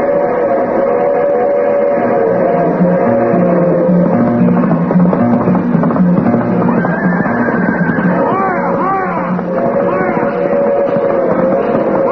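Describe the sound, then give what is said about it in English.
The Westbound Limited train for California, the Pony Express, roars past on the left, a loud, steady rumble of wheels and engine with sustained whistle-like tones and warbling sounds riding over the noise for the whole stretch. “The train which is about to pass us on the left is the Westbound Limited for California.”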